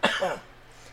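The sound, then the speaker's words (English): A person's coughing fit: a single sharp cough bursts out, followed by a brief rough throat-clearing rasp that fades quickly into quiet. No one speaks. “I tried to recover from my coughing fit in the middle of that, but I started coughing more because that was a good joke.”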